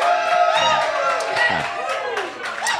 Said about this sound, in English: However, if you agree with my decision, I would like for you to cheer. Give that a shot right now.